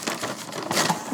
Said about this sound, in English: So I'm ripping apart this paper bag. I think they can hear that, man.